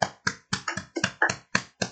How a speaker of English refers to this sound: Let's clap it up real quick.